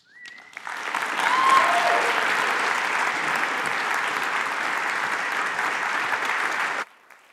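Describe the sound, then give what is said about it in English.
An audience claps steadily for five speakers for several seconds, a dense, even wash of applause that holds a constant level before cutting off abruptly near the end. “Let's give one more sustained applause for all five of our speakers.”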